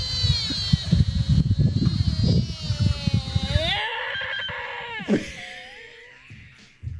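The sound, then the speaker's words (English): A deer's rutting call: a long, strained, high-pitched wail over low rumbling grunts, then a sharp squealing break and a wavering, fading moan that ends abruptly. “This is kind of like a, I don't know, like a horny call. All right, deer in rut.”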